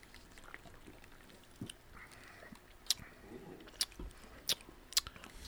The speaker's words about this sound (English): I want to make sure everyone has some. Let's all give it a slurp.